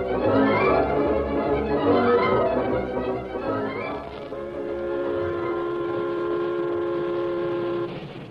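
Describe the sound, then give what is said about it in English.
A wood-burning steam locomotive pulling a train from Colfax chugs along with loud, rhythmic chuffing and rattling past hills toward windswept prairie, then gives a long, steady whistle blast that holds for several seconds before fading. “The train from Colfax, drawn by its snorting, wood-burning engine, rattled past the last spur of the Blue Sage Hills and settled down to the final 30 miles of windswept prairie that lay between it and its destination, River Junction.”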